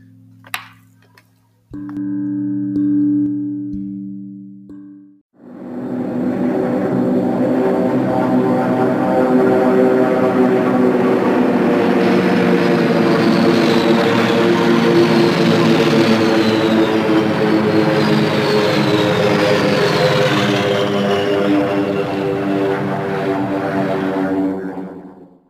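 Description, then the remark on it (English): A dense, droning roar of many attacking propeller planes fills the air, overlapping engine tones rising and shifting as the aircraft come closer, loud and sustained after a brief low hum at the start. “You could see a huge amount of planes coming toward us, like bees defending their hive.”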